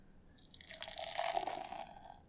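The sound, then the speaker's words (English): Red ale, just opened, pours steadily into a glass for about two seconds, a gurgling splash of liquid with a faint ringing tone as the glass fills, with no voices. “And the pour.”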